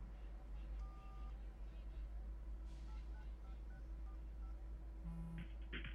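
Touch-tone phone dialing inside a car: a longer tone, then a quick run of short electronic beeps, followed by a brief ringing chirp, all over a steady low rumble.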